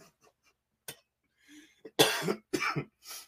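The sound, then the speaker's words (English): A coughing fit: a few small sharp coughs, then a run of three harsh, loud, raspy hacks in quick succession, with no talking. “Made me cough up a lung.”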